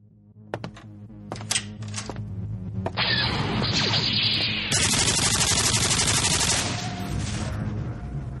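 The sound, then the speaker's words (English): Video game double-barreled nuclear plasma cannon fire: a few sharp blasts, then a loud, sustained roaring barrage over a steady low hum, intense, with no one talking. “Well, I just conquered the outer rim planet of Pico Pond with my trusty double-barreled nuclear plasma cannon.”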